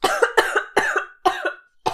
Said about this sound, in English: I couldn't handle a compliment. Oh, I'm dying. That's what happens to me when somebody compliments me. Mm-hmm, yeah. I just start coughing until they walk away.